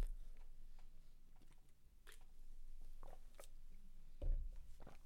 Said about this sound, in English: Excuse me, I got to take a sip of water.